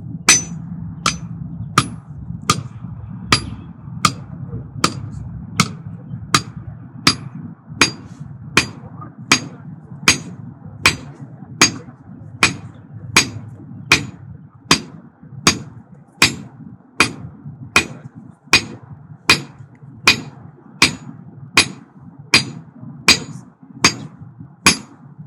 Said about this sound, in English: Others mentioned national events that had garnered a lot of attention as to who they were honoring, who they were remembering as they were swinging the hammer and beating the gun.